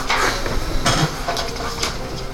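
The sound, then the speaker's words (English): Keys jingle and clink against a metal lock in a few bright, rattling bursts, with short pauses between them. Nobody speaks. “Like I said, Roger and Meliodas could hear where he's at, mostly because there's a sound of jingling keys against a lock.”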